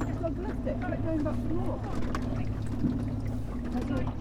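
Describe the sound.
A rowing gig moves fast past on the water, with a steady low rumble and sloshing throughout and indistinct voices murmuring.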